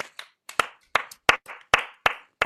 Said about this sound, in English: we need to perfect our sort of Oscar nominees that don't actually win the Oscar clap, because the camera is on you and you're kind of like...